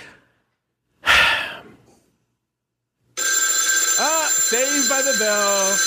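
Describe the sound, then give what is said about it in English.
A short breathy sigh, then after a pause a loud, continuous telephone ring starts and keeps going, a bright buzzing tone with warbling, chirping pitch sweeps layered through it. “Saved by the bell.”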